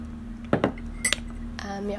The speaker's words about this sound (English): Sorry, I have a cup of coffee, so I'll just be taking a sip.